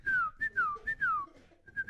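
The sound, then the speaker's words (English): Someone whistles an imitation of a hummingbird: about five quick, high-pitched whistled chirps, several sliding downward in pitch, repeated in a bouncy rhythm with no talking. “See that? Hummingbird.”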